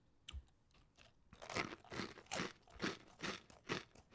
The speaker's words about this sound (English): What's happening? You're chewing something.